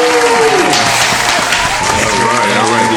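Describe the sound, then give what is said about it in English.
Loud, sustained applause from a crowd fills the whole stretch, a dense steady clatter of clapping with voices whooping and calling out over it, welcoming a hip-hop artist for an interview. “So give it up for ….”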